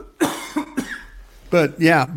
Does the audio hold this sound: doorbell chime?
no